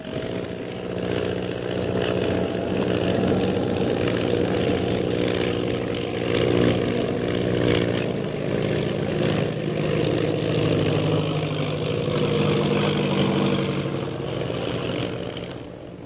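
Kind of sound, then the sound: vehicle, propeller plane engine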